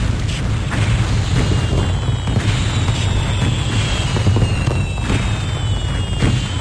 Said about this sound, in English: And you get this great shot of, like, all these terrified people just, like, running from the beach as all these fireworks are launching.